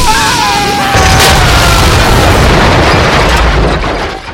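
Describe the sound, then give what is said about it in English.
A cannon explodes with a loud, deep boom, then a dense roar of crackling debris and rumble that sustains for several seconds before beginning to fade. “Cannon 2 went bye-bye!”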